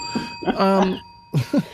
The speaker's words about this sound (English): Oh, wow. That is scandalous. That gets the bell.